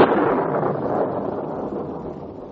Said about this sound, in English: Sounds pretty mysterious with that thunderclap right after its name like that, doesn't it? Well, I don't know whether that thunder's a coincidence or not after all the weird stories about that place.